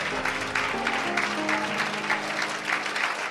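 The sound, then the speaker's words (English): An audience claps steadily and densely as they pray, a continuous wash of many hands, while murmured voices and faint sustained tones sit underneath. “As you clap your hands and pray, they are destroying for your sake.”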